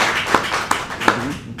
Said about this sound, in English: And I'd like to give all of you a great round of applause for coming and doing so well. Thank you.